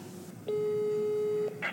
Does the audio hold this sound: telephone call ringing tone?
yes